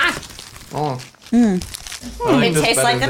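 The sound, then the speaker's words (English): Crisp crunching of Doritos Locos tortilla chips being bitten and chewed, a crackly texture running throughout, with short hummed or murmured vocal sounds layered over the chewing. “We gotta crunch into them, otherwise they're gonna get bad.”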